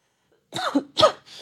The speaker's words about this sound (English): I have to cough again.